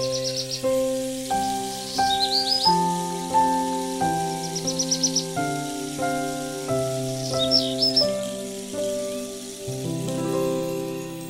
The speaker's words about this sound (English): Okay, tablet. Add birds chirping. That's too loud. Okay, tablet. Add birds that chirp softly.